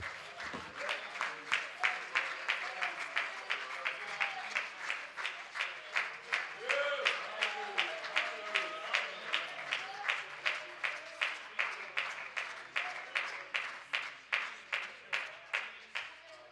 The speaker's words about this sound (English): Why don't we clap our hands and thank God one more time.